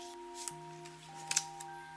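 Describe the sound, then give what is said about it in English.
A deck of tarot cards being shuffled: a handful of quick, crisp snaps and flicks spaced irregularly, fairly quiet, over a steady low electronic hum with no talking. “But how do you know when to stop? One extra shuffle could change everything.”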